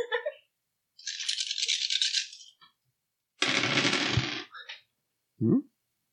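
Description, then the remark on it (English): Dice rattle in a cup for about a second, pause, then rattle again longer and louder before tumbling out, followed by a short thud. Crisp, with no voices. “I feel like this set of dice does not roll sixes.”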